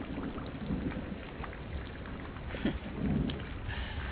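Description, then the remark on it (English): Steady rain hisses continuously while low rumbles of thunder roll underneath, swelling briefly near the end; a full storm soundscape with no voices. “As I listen to the storm, I am reminded of the ones that I have traveled through in my lifetime.”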